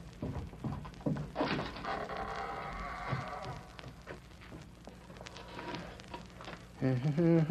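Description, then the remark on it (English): A wooden door creaks on its hinges and swings shut with a dull knock, followed by a quiet stretch and a man's voice speaking near the end. “That door over there goes into a woodshed. Yeah, I'll hide in there.”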